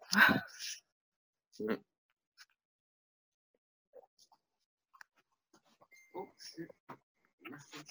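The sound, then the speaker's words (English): A male dog lets out a loud bark, then a second shorter one a moment later, followed by scattered faint clicks and soft murmuring sounds. “I don't think you can see him on the camera, but you can hear him bark.”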